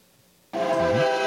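After a faint low hum, a train horn abruptly blares from a distance and holds a steady, full-bodied tone to the end. No one speaks.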